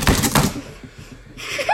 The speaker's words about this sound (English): I'm so good at typing. Yeah, I think I should take over the typing role, though.